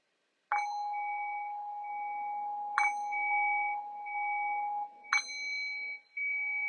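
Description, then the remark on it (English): A meditation bell is struck three times at slow, even intervals to signal the end of a brief guided meditation, each clear metallic tone ringing on and overlapping the next. Steady, with no voices. “And so in the next few moments, I'll ring the sound of the bell to signal the end of this very brief guided meditation.”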